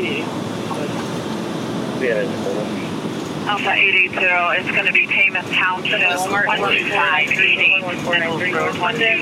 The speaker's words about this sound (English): Hey, you got all kinds of radio traffic happening right now. This is good.